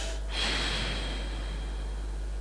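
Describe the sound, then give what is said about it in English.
A slow, deep breath drawn audibly, one long airy rush that swells quickly and then trails on steadily, with no talking. “Phlegmatically, he'll be breathing in and out.”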